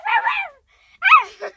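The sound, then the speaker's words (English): A dog lets out two short, high-pitched bursts of yipping barks, separated by a brief pause, with a whiny edge to each call. “The dog's here.”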